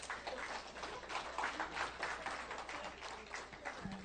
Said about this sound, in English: And what's so interesting is, you can clap.